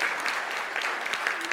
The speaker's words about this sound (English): I think we should give them all a round of applause again, don't we? Well done. Brilliant.